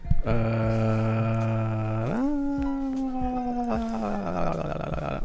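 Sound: dog howling and whining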